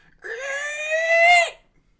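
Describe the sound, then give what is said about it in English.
A human voice lets out a single loud, sustained screech imitating a creature, rising sharply and holding a strained, harmonic-rich tone for over a second before cutting off. “And the creature just looks down upon all of you and just screeches really loudly.”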